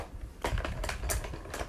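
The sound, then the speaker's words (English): Several quick wooden clicks and light clatters, fairly loud, as pencils are dropped one after another into a container, with no talking. “Okay, so first I'll put pencils in this one.”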